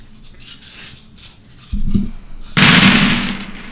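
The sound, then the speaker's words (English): A gun is swung around and its cannon fired at Bronzebeard: a deep booming shot, then a louder blast that rolls into a sustained roaring rumble, with a low crackling background before it and no voices. “Swings the gun around and will fire the cannon.”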